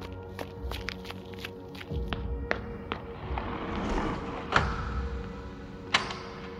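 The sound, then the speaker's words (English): Quick, light footsteps of someone running patter in a steady rhythm, then a soft rushing swell like the doors of a large shopping mall sliding open, with a few sharper thuds as the steps continue. “Its doors opened, and I ran to them.”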